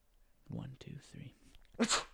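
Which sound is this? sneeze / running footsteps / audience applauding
sneeze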